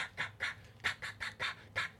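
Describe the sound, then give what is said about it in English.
A single-reed duck call blown in a quick, even series of about seven nasal quacks, fairly loud, each short blast separated by brief gaps. “that's the presentation of air into a single reed duck call”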